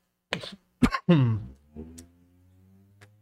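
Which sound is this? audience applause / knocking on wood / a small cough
a small cough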